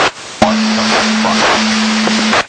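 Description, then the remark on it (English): A radio mic clicks open because someone is sitting on it and stays keyed for about two seconds, passing a dense, muffled rumble with a faint steady hum underneath, then cuts off abruptly. No voices are heard. “Buddy's sitting on the mic.”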